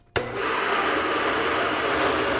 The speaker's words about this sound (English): The next thing I need to do is I need to actually puree all of that. Blend it, water and beans together into a really nice smooth puree like a dip.